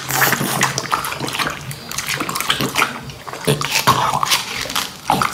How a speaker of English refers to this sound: And it's just like hours of like Labradors eating watermelon. And it's the best thing ever. Chomp, chomp, chomp, chomp.